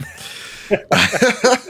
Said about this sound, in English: yeah, as I try to fight off the sneeze, you can find me over at the Trophy Room.